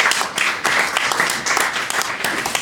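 A crowd applauds to welcome back an audio engineer, clapping in a dense, steady wash of applause, many hands overlapping into a bright, continuous patter that stays loud throughout with no voices standing out.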